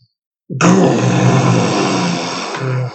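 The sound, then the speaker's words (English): A person makes a long, loud, guttural grunting growl imitating a bugbear, a rough low rumble sustained for over two seconds with a brief dip near the end. “Oh, that's the bugbear.”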